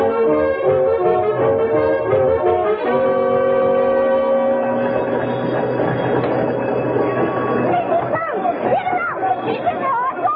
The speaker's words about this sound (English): And the old man and I were as sound asleep as two blessed angels in paradise when we heard the fire engines.